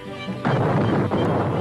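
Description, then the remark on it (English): A boat is smashed apart by a woman: after a brief quiet lead-in, a loud crash erupts into sustained splintering noise, with a second heavy impact about half a second later. “She demolished their boat.”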